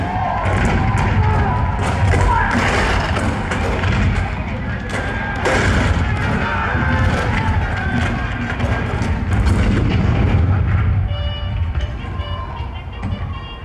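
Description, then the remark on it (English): Repeated cannon fire booms through a dense, chaotic battle din, with crackling gunfire and shouting voices, loud and sustained throughout: the cannon at Fort Sumter on April 12, 1861, opening the American Civil War. “The cannon spoke for war, bitter, violent, and devastating.”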